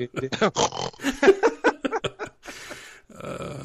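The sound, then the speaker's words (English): A person loudly fakes exaggerated snoring: a quick run of grunting, snorting vocal bursts, then two longer raspy, breathy snores. “Just start really snoring.”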